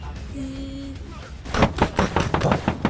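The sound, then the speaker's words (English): A brief electronic tone, then a run of rapid, loud, forceful knocks pounding on a door in quick succession, as police demand that the door be opened. “Somebody's at the door.”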